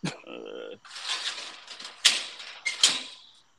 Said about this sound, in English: Nah, this nigga sound like he's tossing around fucking sheet metal or some shit. Oh, my bad. I'm closing cages and shit.